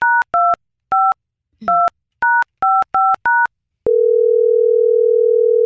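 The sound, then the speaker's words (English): A phone keypad being dialed to call a contest winner: about nine quick two-tone beeps in an uneven rhythm, followed by a steady, continuous tone on the line. No one speaks; the tones are clear. “what do you say we go ahead and just call our winner right now?”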